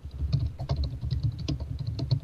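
Rapid, steady keystrokes clatter on a computer keyboard, close up and fairly loud, with a continuous run of overlapping clicks and no voices.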